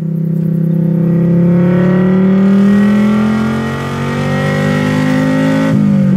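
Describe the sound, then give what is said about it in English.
A five-cylinder car engine revs loudly, its throaty, guttural pitch climbing steadily for several seconds with a brief dip before rising again and cutting off near the end. “So that's the sound they make. And it's just this great five-cylinder noise.”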